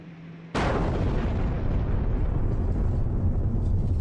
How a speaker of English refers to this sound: There has just been a huge explosion here. We don't know what it means, but it just shook the whole place. Debris flew all over the place. I don't know what that explosion was. All I can tell you is that it was a huge blast.